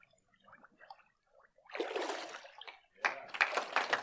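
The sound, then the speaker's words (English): After a few quiet murmurs, a person being baptized is leaned back into the water with a loud splash, then a second burst of splashing and sloshing follows as they come back up. “And I'm just going to lean you back in the water.”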